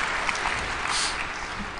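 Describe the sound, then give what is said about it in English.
Steady applause from a group of people, a dense crackling wash of many hands clapping at an even, moderate loudness throughout with no voices on top. “You started clapping.”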